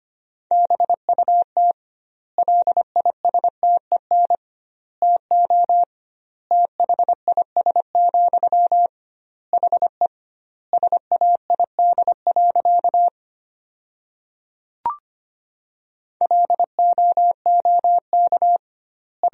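Morse code sent at about 25 words per minute with double word spacing, as sentences made from the top 400 words: a steady, mid-pitched beeping tone keyed into rapid dots and dashes, grouped into words with noticeable gaps between them, and no voices.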